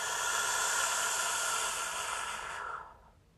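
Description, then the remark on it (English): A steady, airy inhale drawn through pursed lips, as if sipping through a straw, during a guided breathing exercise, lasting nearly three seconds as a bright hiss before fading out. No talking. “And as you do this, we're going to inhale as if we're taking a sip from that straw.”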